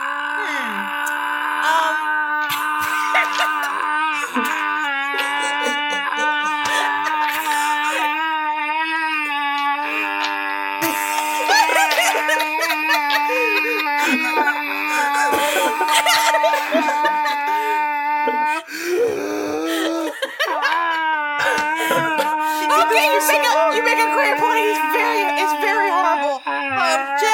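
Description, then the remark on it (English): A person voicing a paladin character in a role-playing game imitates loud, continuous screaming, a sustained high wailing voice that wavers and bends in pitch for nearly half a minute with only brief breaks, staying strident throughout. “If you let him stop screaming, he can cast Zone of Truth, and then we can get to the bottom of all of this.”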